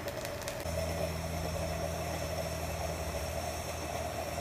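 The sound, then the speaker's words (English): Coffee bubbles up through a stovetop coffee maker as a steady, rumbling gurgle and hiss, with a low droning hum joining in after a moment. It is fairly quiet and there is no talking. “It does come through a little bit bubbly.”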